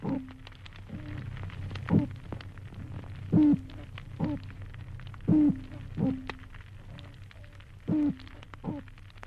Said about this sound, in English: And that's a territorial signal. These toadfish try not to have more than one in an area. And so as you move from one area to the next, where you have a continuous background of toadfish boat whistle sounds.